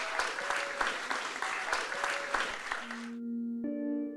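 An audience claps steadily for about three seconds in appreciation of the evening's speakers and their talks, a dense, even wash of many hands, then the applause cuts off as sustained musical tones take over.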